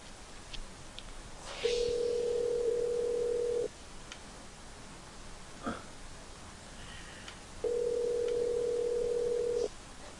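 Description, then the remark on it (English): Two long, steady telephone ringback tones, each about two seconds, separated by a pause of similar length, heard through a phone line over faint background hiss with no talking. “Oh, it's ringing.”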